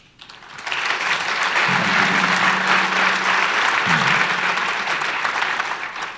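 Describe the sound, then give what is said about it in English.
Sustained applause from an audience after a speaker finishes a talk, a dense wash of many hands clapping that swells quickly and holds steady for several seconds, with a faint low hum briefly underneath. “When he finishes, he gets a clap.”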